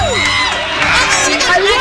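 Loud, excited screaming and cheering from several voices at once, high-pitched shrieks overlapping continuously for the whole moment, close and intense like a small group erupting in celebration.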